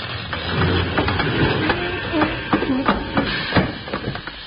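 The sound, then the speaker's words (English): A train brakes hard toward a stop, a dense metallic rumble with repeated clanks and knocks of the cars jolting, loud throughout. “Stop the train”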